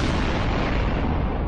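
explosion sound effects

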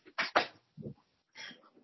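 dog noise

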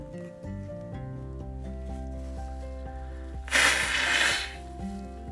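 nose blowing

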